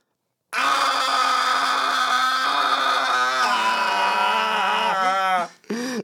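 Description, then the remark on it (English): A single voice does a sustained, rumbling imitation of a car engine, droning steadily for about five seconds with a few revving wobbles near the end before cutting off. “I'm going to be the engine. This is engine.”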